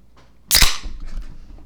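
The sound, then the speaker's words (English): A single sharp crack and fizzy hiss as a beer can is popped open, loud and bright, followed by a soft lingering fizz with no talking. “I only heard one beer because I went with a wine glass. But if the beer crack sounded a little bit distinguished and weathered...”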